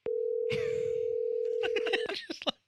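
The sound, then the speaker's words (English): A steady, unbroken telephone dial tone hums for about two seconds after the other party hung up the call, with muffled handling noise and brief voices over it before it cuts off. “Dude, I think we got disconnected, bro. Your dick father hung up the phone.”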